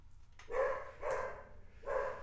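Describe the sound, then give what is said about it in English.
A dog barks three times in a steady sequence, each bark a full, moderately loud woof with a short pause between, the last coming after a slightly longer gap. No one speaks. “Damn it, dog.”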